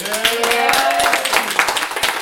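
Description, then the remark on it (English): A short burst of audience applause, many hands clapping in a dense, steady patter at a fairly loud level, with a brief vocal whoop or cheer near the start, as the audience votes on whether the film line "I will have my vengeance in this life or the next" was not improvised. “So if you think that the line that was not improvised is "I will have my vengeance in this life or the next," applaud now.”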